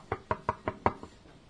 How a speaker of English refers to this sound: Yes, quite so, Watson. I'm afraid my etiquette has been a bit faulty lately, so just to please you, I will knock on the door.